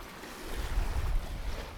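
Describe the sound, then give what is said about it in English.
Steady outdoor wash of breaking surf along a beach on Sanibel, a broad rushing roar that swells slightly in the middle, with low wind rumble underneath and no voices. “And that's it for our walk on the beach.”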